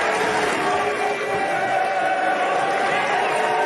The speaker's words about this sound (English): Speaking of standing up there with all that breath with no mask, Mitt Romney got booed.